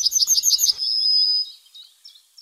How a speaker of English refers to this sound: Tweet of the Week is Yellowhammer, one of the best known of all bird songs. A little bit of bread and no cheese.